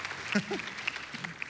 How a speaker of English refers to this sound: Okay, that's enough. Get out of here. Just enough clapping for you.